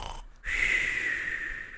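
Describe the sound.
A voice imitates an exaggerated, vaudevillian cartoon snore: one long, loud, breathy rasp that starts abruptly after a brief pause and drags on steadily to the end.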